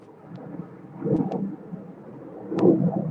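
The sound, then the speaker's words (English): A low, steady roar of an airplane passing overhead, swelling twice in loudness before easing back, with a few faint ticks and no voices. “Oh, I hear an airplane, but I don't see one.”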